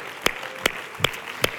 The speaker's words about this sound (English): Well, let's put down our Bibles and let's clap our hands unto the Lord today. Thank you, Jesus.